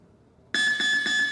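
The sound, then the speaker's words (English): After a moment of quiet, a gym round timer sounds with a loud electronic beep, a continuous shrill tone that pulses rhythmically several times until the end. “We'll hear this beep first.”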